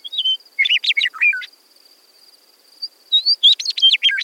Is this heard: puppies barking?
no